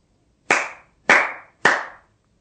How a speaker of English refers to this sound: With the clap of a hand, enlightenment comes. With a clap of a hand, this world dissolves. With a clap of a hand, there's nothing but eternal consciousness.